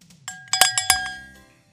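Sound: bell ringing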